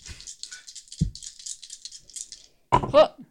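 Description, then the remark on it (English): A quick flurry of small clattering rattles as two dice are shaken and rolled during a tabletop game runs for about two and a half seconds, broken by a couple of soft thumps, then a burst of voices. “I didn't use one of the dice, so I'm using both of these.”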